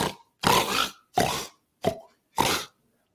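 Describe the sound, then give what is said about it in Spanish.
A voice imitates snoring with five short, raspy, pig-like snorts, loud and separated by brief silences, with no speech around them. “Esto me ha pasado a mí recientemente, pero sin el ronquido”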